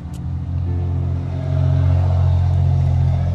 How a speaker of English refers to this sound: Sorry, I had to pause videos. I can't stand some of these trucks with these loud mufflers and stuff like that.